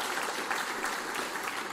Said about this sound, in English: Why don't you give these guys a round of applause this morning? We love these guys.